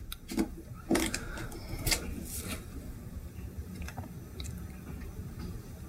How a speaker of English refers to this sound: He's just munching on some berries that you've put through a hand blender.